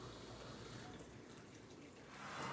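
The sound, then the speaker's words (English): Nearly boiling water pours steadily into a color-changing mug, a continuous splashy stream that grows a little louder and brighter toward the end as the mug fills. “We're gonna add this nearly boiling water to the mug.”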